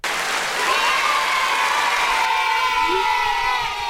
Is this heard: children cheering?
yes